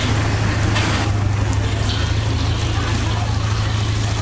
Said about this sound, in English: But I'm going to shoot the process of char kway teow and how to make char kway teow here. Oh, God, I keep forgetting myself. And right now she's making something else, so I'm gonna try to shoot her frying the kway teow here.